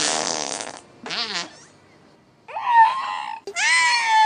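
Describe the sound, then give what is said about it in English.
Wiki, a 16-year-old killer whale at the Marineland Aquarium in Antibes, France, mimics human speech in a series of loud, strained vocalizations: a raspy burst, a wavering squawk, then a pause before two longer, high, warbling cries with rising pitch. “Researchers have found that killer whales are able to copy human speech and imitate the language of other members of their species.”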